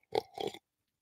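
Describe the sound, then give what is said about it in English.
Two quick, noisy slurps of hot coffee taken from a Yoda coffee cup, the second one longer, with no talking and silence afterward. “Let me take a sip of my Yoda cup real quick.”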